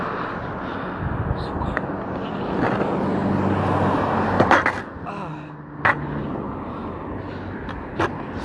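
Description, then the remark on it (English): A skateboard rolls steadily over pavement near houses with a continuous gritty rumble, broken by a few sharp clacks from the board. The rolling is fairly loud. “Shit, I wonder, because I'm being pretty loud, well, at least with my skateboard, I wonder if people get mad.”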